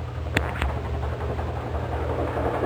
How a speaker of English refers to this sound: Now you can hear that chopper. You hear it now? Real good and plain. That one went right over the tent here, right across the top of the tent. I guess he couldn't have been up probably over 40 or 50 feet.